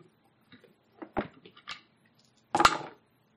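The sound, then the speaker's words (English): Dice rattle and click a few times in quick, light taps, then tumble out in a louder, brief clatter before the sound stops. No one speaks. “Do you want to roll it or should I? You can roll it.”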